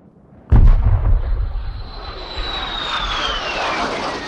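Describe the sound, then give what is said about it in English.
A jet aircraft roars past overhead, high above the Shetland Islands of Scotland, after a sudden loud burst. Its engine noise is sustained and heavy, with a whining tone that slowly descends as it streaks away across the sky. “The condors streaked across the sky, high above the Shetland Islands of Scotland. The plane was nearly invisible to the naked eye.”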